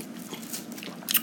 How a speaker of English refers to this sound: Hold on, let me sip my tequila.